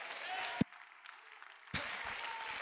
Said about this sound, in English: That ought to get somebody clapping right now.